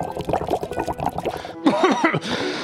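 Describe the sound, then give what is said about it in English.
Water is poured into a container in a short, splashy burst as the water in it is changed, its gurgling tone shifting as it fills, with people talking before and during the pour. “Let me change the water in that.”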